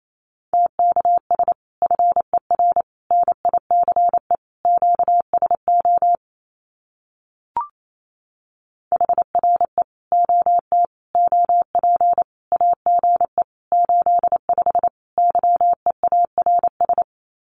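Fast Morse code (CW) at 28 words per minute in a single steady mid-pitched tone, keyed in quick dots and dashes grouped into words, breaking off for a few seconds midway before resuming, with no voices.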